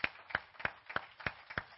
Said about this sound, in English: And so we thank you for coming. Let's give her a hand clap for being here with us.